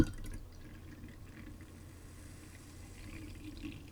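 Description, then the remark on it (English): Gruet sparkling wine is poured into a glass, a soft, steady trickle of liquid with faint fizzing and crackling bubbles, quiet, with no voices. “I hope you can hear the bubbles.”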